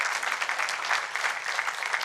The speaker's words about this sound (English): Hello? Yeah, come on. Give the Lord a clap.